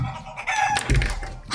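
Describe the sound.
A person's voice mimics a chicken golem, giving a short run of squawky, clucking and crowing noises, fairly loud, with no other talking.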